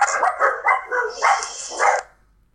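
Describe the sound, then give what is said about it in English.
Two small dogs, Bentley and Stella, bark in an apartment in a quick, overlapping volley of high, yappy barks, loud, for about two seconds before falling silent. “Got some dog action in the apartment for Ed.”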